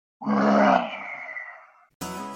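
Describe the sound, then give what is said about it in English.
A single powerful, theatrical roar from Olivier and Tony-nominated actor Ramin Karimloo, best known for the title role of Phantom of the Opera, loud, swelling then slowly fading over about a second and a half before cutting off abruptly. “That roar was from Olivier and Tony-nominated actor Ramin Karimloo.”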